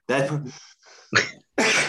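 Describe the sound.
Loud sneeze: a voiced, rising intake of breath builds up, then sharp explosive bursts of air. Two forceful blasts are separated by a short pause.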